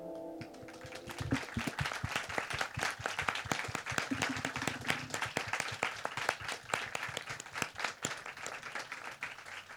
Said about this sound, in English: To all the performers, just want to stand for a second so we can applaud you.